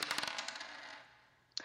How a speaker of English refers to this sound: Okay, so digital dice.